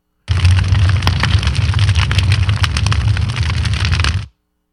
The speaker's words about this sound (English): I mean, it also sounds like sizzling bacon. It does, but it's not. But it's more of a popping. Is it popcorn? It's little things of cellophane that they just kind of wrinkle like. Oh, okay. Yeah. And it gives that little pop.